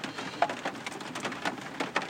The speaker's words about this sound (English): Actually, we turkeys on the move today, because if you listening good, then you can hear the rain is beating us the fuck down.